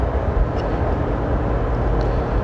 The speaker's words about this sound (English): for some reason, there's a lot of traffic out today. Must have lifted the the lockdown early.